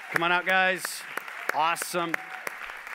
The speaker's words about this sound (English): Can you give them a great big hand? Come on.